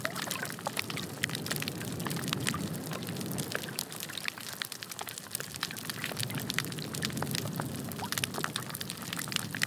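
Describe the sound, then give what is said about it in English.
Underwater sound of a busy, healthy coral reef at Vanua Levu, Fiji, recorded in 1995, with about 15 or 16 different types of fish: a dense, continuous crackle of sharp snaps and pops over a low, murmuring rumble of fish noises, steady throughout with no voices. “This is what the healthy reef sounded like. Bernie estimates there were about 15 or 16 different types of fish.”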